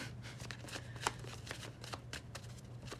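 Tarot cards are shuffled in a steady run of papery riffles and soft slaps, with one sharper snap partway through, all over a low constant hum.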